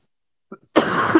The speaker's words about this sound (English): Give me 1 second. I just need to cough my lungs up.